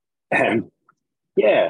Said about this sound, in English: Just technical problems trying to unmute my microphone because I'm still coughing a bit from having COVID, so my fat fingers weren't hitting the right button.